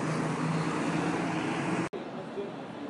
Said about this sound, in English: Anyway, there goes the 30 bus on its way to Marble Arch. So I'm now walking in the other direction.